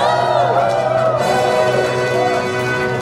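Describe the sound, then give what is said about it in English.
A loud live-show audience cheers and whoops without a break for about three seconds as a Christmas theme song is introduced, a dense, steady wall of audience noise with some bright, tonal sounds woven through it. “Make some noise!”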